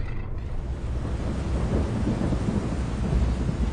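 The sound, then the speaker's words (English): A steady roar of heavy rain with deep, rumbling thunder rolling underneath, loud and continuous throughout, with no voices. “Through the darkness of the storm”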